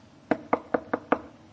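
Five quick, evenly spaced knocks rap sharply on a door, with no voices around them.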